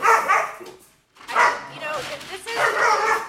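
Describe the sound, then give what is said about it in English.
A dog barks in three loud, drawn-out bursts, with a short silent gap after the first and a raspy, strained edge to each bark. “No, but I'm not going to edit out the fact that there was barking and silence.”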